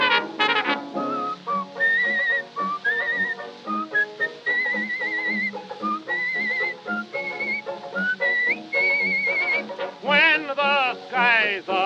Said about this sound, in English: When the skies are cloudy and gray, that's the time to pucker up your lips this way and whistle, whistle, drive away care. Whistle the whole day through.